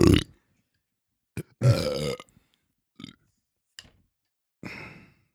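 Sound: burp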